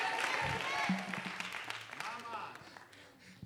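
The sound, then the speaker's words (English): A crowd claps their hands unto the Lord in a dense, steady patter, loudest at first and easing slightly, with voices calling out and singing over the clapping. “Could you clap your hands unto the Lord?”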